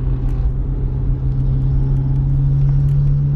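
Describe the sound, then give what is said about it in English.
A loud car engine revving with a deep, throaty rumble and a steady low drone that holds for several seconds, with no voices over it: an old, beat-up Mazda car with racing modifications that make it sound like a hot rod. “Somebody did something to it to make it sound like a hot rod.”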